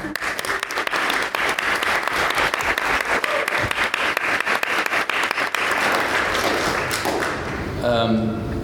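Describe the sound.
An audience at a show bursts into a long round of applause for two of the show's staff, dense crackling claps sustained for several seconds before tapering off, with a voice emerging at the end.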